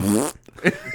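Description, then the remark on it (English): A loud mouth-made fart noise, a buzzy raspberry lasting about a third of a second, followed by a few brief, quieter vocal sounds. “Stabs her when he makes the fart noise.”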